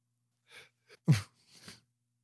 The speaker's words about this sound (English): Sneezed. I hope I hit mute in time. That was a big sneeze. No, you're good.